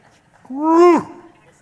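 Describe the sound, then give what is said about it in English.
A man's voice gives a single short imitation of a lion's roar, a strained growl that swells, rises in pitch, then drops and fades within about half a second. Fairly loud. “Amazing talents that you did not know that I had.”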